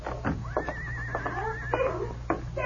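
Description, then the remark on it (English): A skittish horse hitched to a two-seated buggy lets out a single shrill, quavering whinny lasting about a second, fairly loud, with a few short snorting bursts around it over a low steady background hum. “The horse was skittish, and her efforts were futile.”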